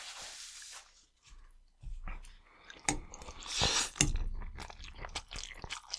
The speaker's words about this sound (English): Oh, now you know who's chewing. Oh, they can tell. There's subtle differences in cadences.